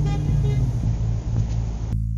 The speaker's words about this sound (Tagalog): Nagawa pang bumusina na mag-asawa sa amin bilang hudyat na aalis na sila bago nila pinatakbo ang sasakyan.